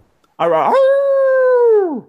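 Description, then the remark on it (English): A person imitates a wolf howl: one loud, sustained cry that starts with a rough, wavering rise, holds a steady pitch for over a second, then slides down and fades. “Now they have someone they can hire to make the noise when they run out for the team.”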